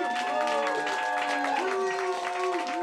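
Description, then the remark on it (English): An audience applauds and cheers to vote by applause for the returning champion as winner of the final round, dense clapping mixed with sustained cheers and whoops for about three seconds, holding at an even, moderately loud level throughout. “I know your hands are probably sore, but we're going to ask you by applause, who thinks”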